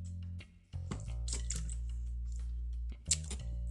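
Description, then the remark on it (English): Quiet sipping of wild cherry sparkling water, with a short slurp and faint crackling bubbles over a steady low hum. No one speaks. “Wild Cherry Sparkling Water. Telling you, sparkling water is delicious.”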